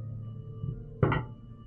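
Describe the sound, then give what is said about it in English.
Dice clatter briefly, a quick double rattle of hard clicks about a second in, fairly loud against a low steady hum, then fade out. No one speaks. “I hear the dice moving.”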